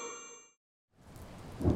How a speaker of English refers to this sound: Why is it raining again? I must find a place to shelter from the rain.